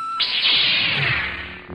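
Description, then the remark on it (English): A flashback transition effect, triggered by pushing the button on a "flashbaculator": a sudden, loud burst of bright shimmering noise that swells, holds for over a second with a swirling texture, then thins out toward the end. No voices. “Oh, the flashback starts when I push the button on my flashbaculator.”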